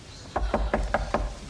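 A woman knocks about six steady, evenly spaced times on a wooden door, moderately loud, with a faint low hum in the background and no talking.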